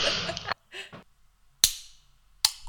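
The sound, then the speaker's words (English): A canned raspberry mojito cracks open: a hissy rush at the start, then two sharp pops with brief fizzing tails about a second apart, clear and fairly loud with no talking. “Before we start, I have a raspberry mojito that I've been waiting to open.”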